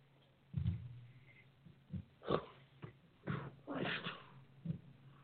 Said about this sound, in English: And I have to yawn again.